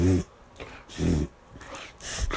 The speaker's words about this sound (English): Don't mind the dog. The dog's just sneezing. The dog is doing a reverse sneeze because she inhaled a little dust.